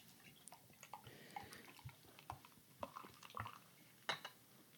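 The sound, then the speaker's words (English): Elysian Space Dust beer poured into a large stein, a quiet, uneven splashing and trickling with scattered drips and light glassy clinks, and no one talking. “Well, I'm just going to pour this right in here.”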